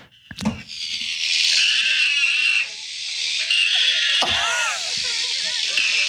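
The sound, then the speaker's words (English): An alpaca strapped down to a table screams with its mouth open in a loud, shrill, nearly unbroken wail lasting about six seconds, with a raspy, wavering high pitch and only brief catches between breaths. “That is my alpaca. That's an alpaca. Screaming getting a haircut.”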